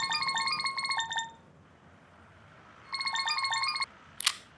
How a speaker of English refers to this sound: As I was walking over to Planet Hollywood, my phone rang.